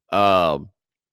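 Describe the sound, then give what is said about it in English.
A single drawn-out, voiced yawn, loud, with a strained open-mouthed tone that slides downward and trails off after about half a second. “Yes, I keep on yawning because I got to figure this out.”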